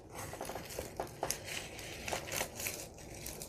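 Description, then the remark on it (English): A craft knife, slowly pressed down in a vertical cut along a ruler, scores through material in a series of dry, crackling scrapes, with a few sharper bursts of crunching in an otherwise steady, gritty rasp. No one speaks. “And we're cutting with the craft knife, slowly pressing down, vertical cut.”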